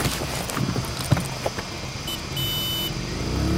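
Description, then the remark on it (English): A vehicle belching gray-black fumes rumbles steadily through busy traffic, its driver ignoring traffic lanes and weaving in and out between cars, motorcycles and pedestrians. Scattered clatters and knocks, and a brief high horn-like tone near the end. No one speaks. “He's weaving in and out, around and in between cars, motorcycles, and pedestrians.”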